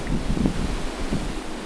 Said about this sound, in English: This is the actual sound of an ocean. That was real ocean.